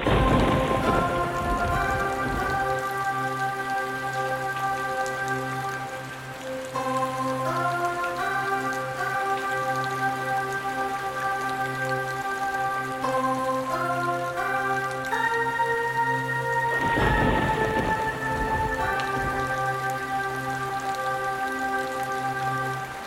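Steady, heavy rain hisses throughout, with deep rolling rumbles of thunder near the start and again midway, all beneath slow, sustained musical tones that shift in pitch.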